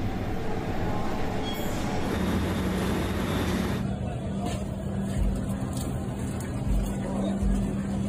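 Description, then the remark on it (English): A loud, steady rumble of a New York City subway F train running at West 4th Street, with a continuous rattling roar and metallic rail noise that holds without fading for several seconds. “Ugh, especially under the F train at West 4th Street, eh?”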